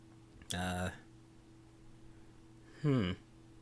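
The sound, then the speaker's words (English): A freestyle soda machine gives off two short bursts of garbled, voice-like static about two seconds apart, riding over a steady low electrical hum, with no intelligible words. “And rather than letting out a static hum, it's almost as if it's trying to say something.”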